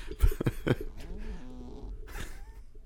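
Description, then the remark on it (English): A cat snores: a few quick, rough low puffs followed by longer wheezy, whistling breaths, with no one talking. “And it's when we're talking that it snores.”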